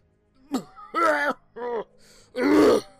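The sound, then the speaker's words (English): A man coughs and hacks in four rough, raspy bursts, the last one longest and most strained, fairly loud with no talking. “Coughing and hacking, he places a hand on his chest, just below his neck.”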